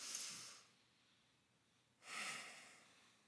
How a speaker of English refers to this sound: And so we're going to give just time and space to slow down, to release our worries to the Lord and receive from him. And we're going to start with just a moment of relaxing and breathing. So if you guys would breathe with me.